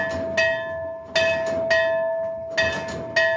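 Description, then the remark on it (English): A church bell rings out in a quick, uneven series of strikes, each clang overlapping the last so a bright, sustained metallic tone hangs throughout. Rung by a priest at the back of the church to signal that Mass is about to start. Clear, with no voices. “Father Roy then goes to the back of the church to ring a bell, signaling that Mass is about to start.”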